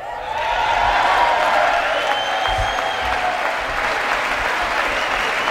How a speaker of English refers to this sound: Does it say hold for applause? Stand up and show them.